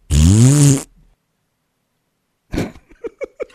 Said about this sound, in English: Oh, we got multiple. I got multiple fart noises out of it.